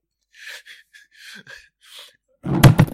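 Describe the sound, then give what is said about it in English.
A microphone gets knocked over, making a loud, booming clatter of rumbling thumps at the very end, after a few soft, breathy hissing noises with no speech. “Oops, sorry, I knocked over my mic.”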